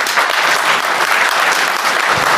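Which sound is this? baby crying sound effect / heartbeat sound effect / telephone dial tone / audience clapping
audience clapping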